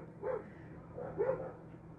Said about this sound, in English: Hold on, my dog's barking. That's not our dog. That's the fucking neighbor's dog.